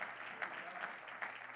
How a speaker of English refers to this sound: Oh, somebody clap your hands unto the Lord this morning.